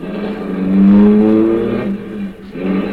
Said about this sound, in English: Then we drove on.